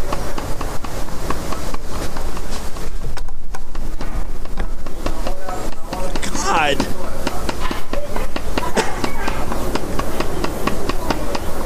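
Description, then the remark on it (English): A man strikes his own forehead with a hammer over and over in a bone-smashing stunt, producing a rapid, steady series of sharp, loud knocks while people talk throughout. “Literally hammering in his forehead.”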